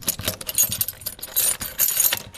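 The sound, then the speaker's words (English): A bunch of keys jangles as a hospital door that opens outward is unlocked, with bright metallic clinks arriving in irregular bursts over a low, steady rumble. No one speaks. “it's possible to open that door with a key here and it opens out.”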